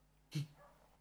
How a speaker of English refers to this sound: Those yappy dogs.